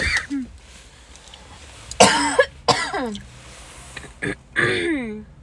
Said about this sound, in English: Like, right now, my mom keeps coughing, so.